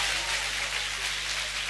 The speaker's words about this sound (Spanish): Fuerte el aplauso.